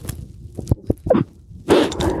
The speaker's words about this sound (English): Oh. That's a surprise. Hello, buddy. Come on out here. Hi, dog.